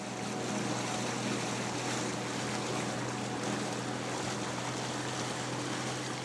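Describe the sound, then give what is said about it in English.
A banana boat, a long, skinny motor dinghy, drones steadily across open ocean water on a trip to the Saposa Islands region of Papua New Guinea, its low engine hum constant beneath a wash of splashing waves and rushing wind, fairly loud with no voices. “In preparation for our trip over to the Saposa Islands region, we had to organise a banana boat.”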